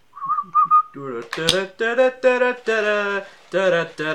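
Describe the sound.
A few short, clear whistled notes of the Battle Hymn of the Republic melody, then a voice takes over the tune in steady sustained notes without distinct words.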